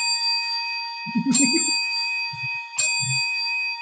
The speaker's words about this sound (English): That is a 5-tap. The bells are ringing.